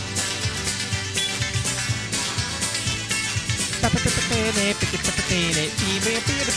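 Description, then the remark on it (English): Steel guitar music plays loud with a full band behind it, its notes sliding and bending between pitches, growing more prominent in the second half. No voices. “Steel guitar. Gotta love steel guitar.”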